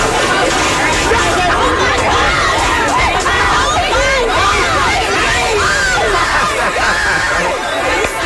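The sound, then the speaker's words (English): A dense, loud crowd of Black Friday shoppers rushing into a Victoria's Secret store in Chattanooga, Tennessee, as the gates open to grab sweaters, shouting and yelling over one another while a sales associate yells, a continuous chaotic roar of many overlapping voices that fills the whole clip without pause. “Because there is a mass crowd of people that have rushed into the store to grab sweaters.”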